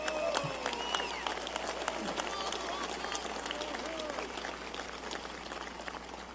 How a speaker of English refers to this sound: In the journey here, the only way to really begin by thanking the people is to start with Senator Cole. You've heard it from many times. Pause for applause.